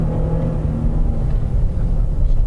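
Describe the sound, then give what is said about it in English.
A car engine roars loud at full throttle with downshifts, a steady heavy drone with a deep low rumble and a held tonal whine, no voices over it; the car has a 7,100 rpm redline. “Full throttle. Downshifts. We've got a 7100 red line. Oh, that's a good shift.”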